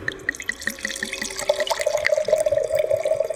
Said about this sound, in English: Oh, that's a good sound, isn't it? It pours into the glass as a medium-bodied red. Holding it up to the light, the color could be described as garnet.